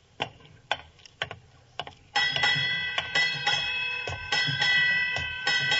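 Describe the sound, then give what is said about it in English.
A few sharp ticks, then a ship's bell strikes eight bells at midnight on New Year's, ringing repeatedly in close pairs, each clang bright and sustained, overlapping into a loud shimmering tone. No one speaks. “Eight bells.”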